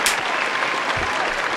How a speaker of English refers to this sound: Shout out to the Pregame Podcast listener community. Man, round of applause, man.